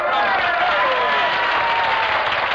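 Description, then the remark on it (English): An audience bursts into steady, loud applause after a contestant says she is from Brooklyn, a dense wash of many hands clapping that holds for a couple of seconds without any talking over it. “Well, I fail to see why the location of birth should be met with applause.”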